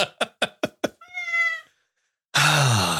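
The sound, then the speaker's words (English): Five quick taps lead into a single drawn-out cat meow, clear. After a brief silence, a louder, harsher burst of sound cuts in. “This cat chooses the wrong times to meow and the right times to stay silent.”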